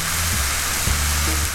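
Onions sizzle in a hot pan, a steady, rain-like crackle of hiss and pops that runs unbroken from start to finish with no voices.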